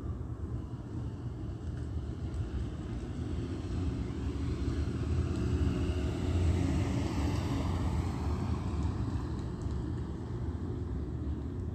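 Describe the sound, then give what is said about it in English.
A steady, deep jet-engine roar from a large commercial-size airplane flying over a Metrolink train station and train tracks fills the whole clip, swelling slightly louder midway before holding a constant drone. No voices are heard. “The state is flying over the same Metrolink train station, train tracks right here to my right, and a commercial size airplane.”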